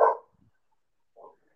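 dog barking

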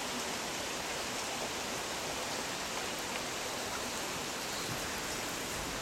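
rain falling

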